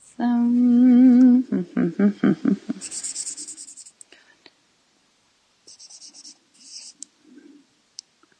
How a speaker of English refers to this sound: Can you actually hear the sound of me like scratching on the paper? That's hilarious. It's very mesmerizing. It's yes, this is my meditation.